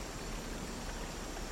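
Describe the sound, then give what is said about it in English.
A waterfall's steady, unbroken rush of water, a dense hiss spread evenly from low rumble to high spray, holding the same moderate level throughout with no voices. “Just listening to the sound of the waterfall as it washes over you.”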